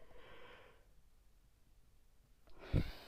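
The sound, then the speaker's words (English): A breathy yawn: a long airy exhale fades into quiet, then another rushing breath swells near the end with a low, throaty push. No talking. “I definitely am just gonna start calling this the Yawn Podcast”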